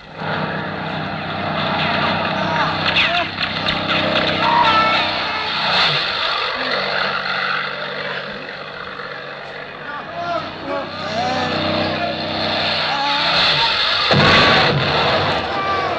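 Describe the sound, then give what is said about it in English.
Two low-flying propeller airplanes roar past overhead, a loud, sustained engine drone that swells and surges, with excited voices shouting faintly beneath the noise. “Look, the plane! There are 2 of them! Barely off the ground!”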